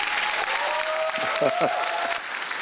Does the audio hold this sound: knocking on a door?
no